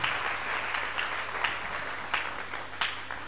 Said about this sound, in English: Somebody shout a big amen. Clap your hands together for Jesus again. The clapping of your hands is just to engage you so you don't sleep.